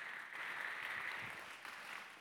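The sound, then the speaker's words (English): A crowd claps steadily in praise of God, dense overlapping handclaps forming a continuous wash of applause that holds at a moderate, even level throughout without any voices standing out. “Come on, slap you right now and give God a praise in the house. You're clapping.”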